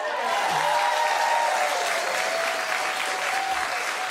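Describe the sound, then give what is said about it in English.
An audience applauds steadily, a dense, even wash of many hands clapping at a constant loud level throughout, with no voices standing out above it. “They're really applauding well, that.”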